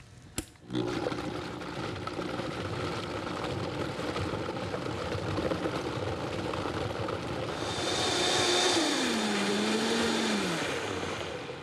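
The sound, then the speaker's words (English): A lidded blender starts with a click and runs loudly and steadily, mixing a salad dressing with salt, mustard powder and about 1/4 cup of water: a dense whirring roar with a motor hum that shifts pitch and grows brighter toward the end. No one speaks. “Then we're gonna put the lid on that thing there, and we're gonna start it up. We're not gonna talk, because this is pretty loud.”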